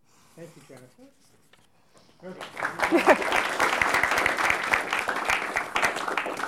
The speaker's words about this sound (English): There will be another opportunity. Don't use up your clapping. But I only get one round of clapping, they nope, told me.